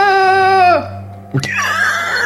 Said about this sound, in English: That's …. I recognize that scream.